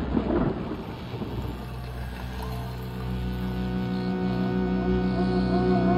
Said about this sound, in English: Clap of thunder. Yeah, right, exactly. Then lightning.